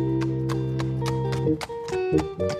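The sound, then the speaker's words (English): Horse hooves clip-clop on a horse trail in Griffith Park, Los Angeles, in a steady, even rhythm, about nine crisp strikes in under three seconds, over a sustained musical drone that shifts partway through. “Suddenly, Hollywood bigwigs and LA socialites started to mingle on the horse trails in Griffith Park.”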